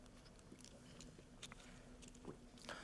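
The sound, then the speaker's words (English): A quiet sip of a drink: soft wet mouth clicks and a faint slurp, then a gentle swallow, with a low steady hum underneath and no talking. “I'm going to read you a portion here after I take a little sip here.”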